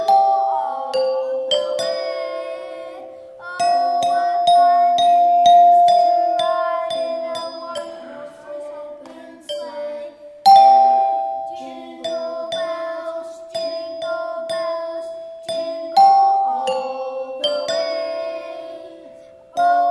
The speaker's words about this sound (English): Now I like to play the Christmas bells.